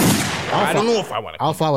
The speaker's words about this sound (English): Gunshots.